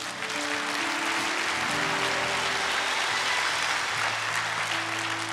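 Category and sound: crowd, audience applauding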